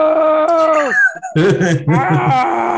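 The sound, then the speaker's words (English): Loud, excited screaming from several voices, long wavering cries that slide up and down in pitch, a brief pause, then a second burst of overlapping shrieks with no words. “The screams, they're not agony, they're excitement.”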